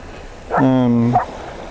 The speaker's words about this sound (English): My dog is barking. We have a lot of cows on this field that I'm on right now, and you might be able to hear him in the background. He's a herding dog, so he herds these young cows, which are now gathering down here.